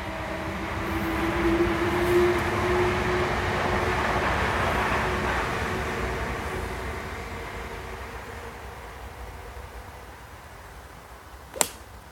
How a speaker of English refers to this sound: And the train's back. Quite like the atmospheric sound of the trains.